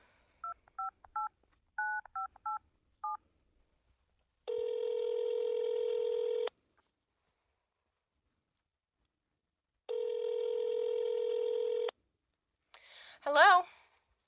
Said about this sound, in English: Okay, just let me dial, okay? I'll hit speaker and you'll hear.